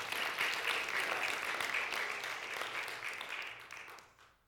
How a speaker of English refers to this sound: Come on, someone, clap your hands to Jesus Christ.